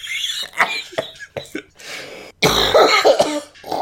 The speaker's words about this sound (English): Sorry, I said I had a cold, and you made me laugh very hard, so I coughed very hard. Sorry.